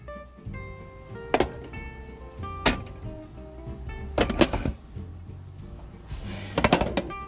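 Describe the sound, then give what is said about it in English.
Dishes being washed: sharp clinks and clatters of plates and utensils knocking together at irregular intervals over a low, steady background of running water and hum. “Alright, so I'm managing the dishes now.”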